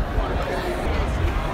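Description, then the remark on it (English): Dense, elated crowd chatter at an NBA playoff basketball game, many voices blending into a steady, fairly loud hubbub with no single speaker standing out. “We're with the crowd now. Everybody is elated.”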